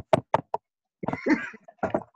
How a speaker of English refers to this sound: Knocking on the door.